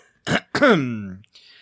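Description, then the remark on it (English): A fairly loud cough in two quick bursts, the second drawn out into a raspy voiced throat-clearing sound that trails off, with no talking. “So, stop coughing.”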